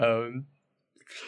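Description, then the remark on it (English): A voice imitates keyboard typing clicks, a short voiced burst followed after a brief pause by a hissy, clattering vocal sound, moderately loud. “So he starts clickety-clackety preparing the system. Get it? Clickety-clackety, totally. Yeah. Using a keyboard.”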